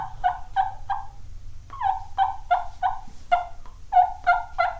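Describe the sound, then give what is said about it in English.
Imitated turkey purring calls: short, soft, throaty notes in quick clusters of three to five, with brief pauses between, over a low steady rumble. No one speaks. “Even if you can't purr, do this.”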